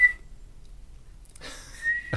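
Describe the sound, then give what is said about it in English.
Someone imitates a life vest safety whistle with their mouth: a quick shrill chirp, a brief pause, then a longer breathy, piercing whistle blast, fairly loud, with no talking. “Who has ever been saved after a plane crash from blowing on the whistle on their life vest?”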